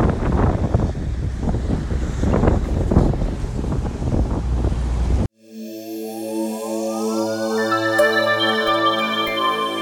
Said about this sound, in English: I don't know if this is going to come out because there's probably quite a bit of wind noise in the background, but just finishing our shift. You can hear the water splashing over the decks. Nice high waves.